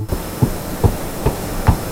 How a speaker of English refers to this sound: It's aggression between two different crocodiles is usually how it's displayed. It's a growling, slapping. Here's the growl. Here's a bit of a splash.